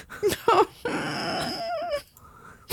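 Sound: dog growling and whimpering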